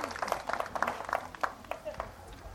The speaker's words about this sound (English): Thanks, worship team. Great job. Everyone can sit down. I mean, you can applaud for the worship team one more time if you want to, because they did a great job.